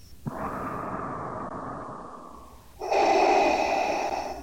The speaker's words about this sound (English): Vader's sound was cut back to just that mechanical breathing, which is so effectively creepy.